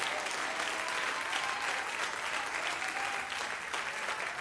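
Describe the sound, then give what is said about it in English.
An audience claps their hands in rejoicing, sustained, dense applause, a steady wash of many overlapping claps with no voices standing out. “Would you clap your hands and would you rejoice here today?”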